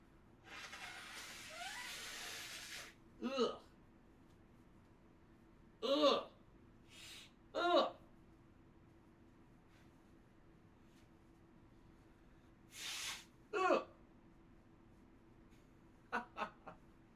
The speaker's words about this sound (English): By the way, guys, this my stupid post-nasal drip is really bothering me. I'm going to blow my nose quick. Hold on.